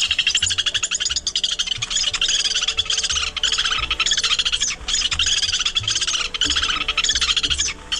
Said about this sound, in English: The bird is the Lewis's woodpecker. Here's its typical chattering sound.